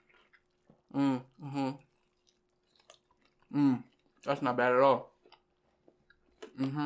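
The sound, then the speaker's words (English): Wet chewing and smacking sounds of chicken wings being eaten come in soft irregular bursts between short stretches of a man talking, with quick clicks of biting in the quiet gaps. “While we're chewing, you're supposed to throw the question out.”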